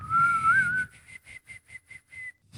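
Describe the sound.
A person whistles a short tune: one long, gently rising note, then a quick run of about seven short, evenly spaced higher notes, clear and alone with no talking.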